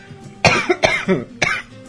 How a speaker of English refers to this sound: Been fighting that cough, sorry.